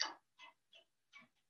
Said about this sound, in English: My dog is knocking, asking to be let in. All right. She gets quite demanding.